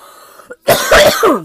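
A loud burst of harsh coughing, three or four hacking coughs in quick succession after a brief throat-clearing rasp, like a short coughing fit.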